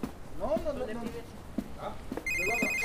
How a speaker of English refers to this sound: Oh, you gotta be kidding me. The hell is this now? Whose fucking phone is this?